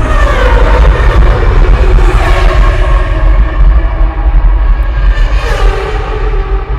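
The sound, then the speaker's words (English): Loud, steady car engine noise with a deep rumble, rising and falling in pitch as cars pass by along a stretch of road, one swelling whoosh near the end; no one speaks. “So now we'll watch this video, and the car sounds, of course, continue.”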